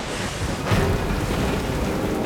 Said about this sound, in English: Then it began to rain.